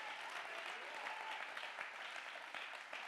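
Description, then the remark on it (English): An audience claps their hands to give God the praise, a dense, steady wash of many overlapping claps holding at an even, moderate level for a few seconds with no voices standing out. “Clap your hand to give God the praise.”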